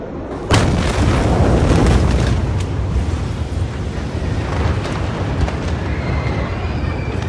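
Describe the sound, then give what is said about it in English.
A single massive explosion of an ammonium nitrate stockpile in a port warehouse, about 30 seconds after a first explosion, booms with a sharp onset giving way to a long, heavy roar and rumble that stays loud, then slowly rolls on without fading. “Roughly 30 seconds after the first explosion, the massive stockpile of the chemical compound detonated.”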